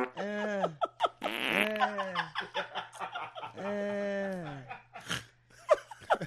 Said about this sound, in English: Back to cupping my farts. Cupping farts.